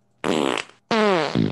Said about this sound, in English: Oh, yeah. It's fart pong. Yeah. We're having a fart off.